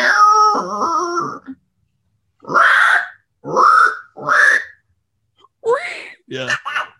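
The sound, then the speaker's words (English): A voice imitates Donald Duck with raspy, buzzy squawks, several short bursts separated by pauses, fairly loud, with no ordinary talking. “Oh, Donald Duck. There you go.”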